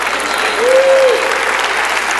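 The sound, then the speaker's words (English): A crowd applauds a point about staying at one job, in a steady, dense patter of many hands, with a brief faint tonal whistle rising and falling midway through the clapping. “Y'all was clapping on that job thing.”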